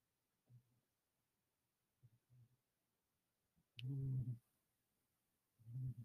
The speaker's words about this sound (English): You can probably now hear the dog of the pod snoring in the background now that he's settled into being trapped in here with us. Wait, let them hear it.